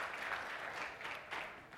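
Audience applause, a steady wash of many hands clapping at once, fairly even in level for its whole short length, with no voices over it.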